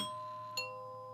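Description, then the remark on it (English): A doorbell chime rings two tones, a ding followed by a slightly lower dong about half a second later, each note ringing and slowly fading. No one speaks. “But yes, so sort of discussing this new woman in their dad's life, and wouldn't you know it, she comes to the door.”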